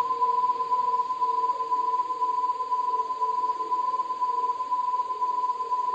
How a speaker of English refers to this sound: A little bit like TV static, but also a little bit eerie, ethereal. Just two warbling notes, over and over and over. For almost 3 minutes, the noise continued, blasting through the speakers.